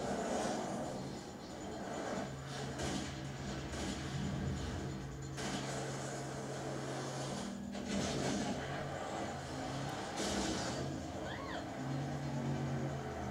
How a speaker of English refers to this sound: Okay, that guy's driving the shit out of that car to demonstrate. Bring some excitement to this obviously very slow moving car chase. Good Lord. This is one of the most boring car chases.